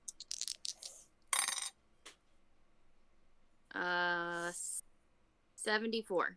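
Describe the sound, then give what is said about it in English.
Percentile dice for a D100 roll clatter and tumble across a hard tabletop in a quick burst of sharp clicks, then settle. A short vocal sound and brief voices follow. “Give me a D100 roll.”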